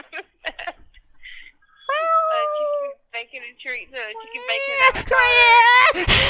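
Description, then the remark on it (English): A person imitates cat meows: several drawn-out, wavering meows with short chirpy sounds between them. They build to a louder, longer final yowl over a burst of rough noise. “She even got onto it like after a few meows.”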